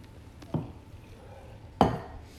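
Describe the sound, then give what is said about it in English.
Someone sipping carbonated water: two short, soft gulping clicks about a second apart over a faint hissy background, with no talking. “Sorry, I just took a sip of water, and it's carbonated water, which I've added online.”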